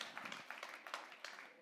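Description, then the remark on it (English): Soft, light golf-clap style clapping from a listener during a sermon: a handful of quiet, sparse claps at an unhurried pace, with a faint murmur underneath. “there's somebody that was like doing like a golf clap. I'm gonna clap with you.”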